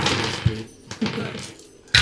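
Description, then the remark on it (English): A lot of dice rattle and clatter together in a dense, bright jumble of clicks, punctuated by a few sharper knocks as they tumble and settle, rolled during a tabletop role-playing game. “This is sounds like a lot of dice.”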